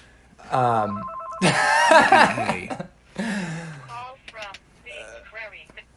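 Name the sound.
phone ringing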